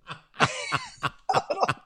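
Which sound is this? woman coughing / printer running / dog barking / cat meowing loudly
woman coughing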